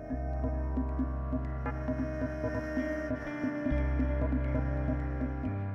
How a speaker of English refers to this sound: listening to that buzz being endlessly draped around you can eventually lead to false messages being played back to you